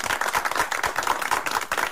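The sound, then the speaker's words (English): Six people in a studio, trumpet players who have put their trumpets down, clap together for rugby player Will Genia of the Queensland Reds, a brisk, uneven patter of sharp hand claps that holds steady for a couple of seconds, with no voices over it. “All our six people in the studio clapping there.”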